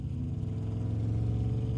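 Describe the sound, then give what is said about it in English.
A car engine drones steadily, a low rumbling hum that holds an even loudness throughout, with no voices, as the car turns onto a rural road leading out of Columbus past open fields and farmland. “Theora's date turned his car onto a rural road that led out of the city, and Theora watched the buildings of Columbus give way to open fields and farmland.”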